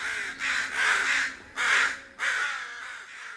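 Crows cawing in a series of about four harsh, raspy calls, loud, following one another with short gaps and no talking.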